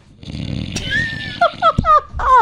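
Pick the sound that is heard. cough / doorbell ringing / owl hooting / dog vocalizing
dog vocalizing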